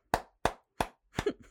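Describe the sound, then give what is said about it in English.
Three sharp hand claps land at a steady, deliberate pace, followed by a messier burst of clapping mixed with brief tonal, voice-like sounds near the end. It is a rogue clap from the back of a room of people watching a debate, after Eric Swalwell said something. “So everyone knows on during the debate that we were watching it and I was live tweeting it, and Swalwell said something, and all you heard was a rogue clap in the back, like.”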